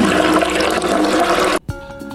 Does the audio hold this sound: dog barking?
no